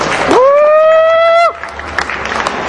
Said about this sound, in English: Can I get a round of applause for them?